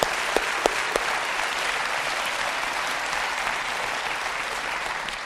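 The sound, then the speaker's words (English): An audience breaks into steady applause, dense overlapping claps sustained at an even level for several seconds, with a few sharper individual claps standing out near the start. “Come on, you can clap for that.”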